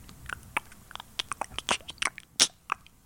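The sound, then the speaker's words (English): Crunchy munching: a quick, irregular run of wet bites and chews, some louder crunches standing out, with no voices. “Somebody munching on something.”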